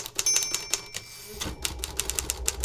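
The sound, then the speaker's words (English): Rapid typewriter keys clack in a quick, uneven burst of sharp strikes, moderately loud, with a faint mechanical ring near the start and a low rumble entering midway; novelist Glasgow typing in her second-floor study at her home on West Main Street, Richmond. “For more than half a century, Glasgow lived in that home on West Main Street in Richmond and wrote many of her novels within the walls of a second-floor study, clacking away on her typewriter.”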